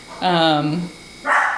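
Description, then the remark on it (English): A dog barks: a loud, drawn-out tonal bark, a brief pause, then a shorter, harsher bark, with no other sounds around them. “oh, this dog, I'm sorry.”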